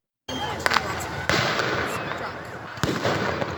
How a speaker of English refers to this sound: It looks like a war zone. 400 young people lighting off fireworks in Tawasin, aiming explosives at each other. Seeing chaos.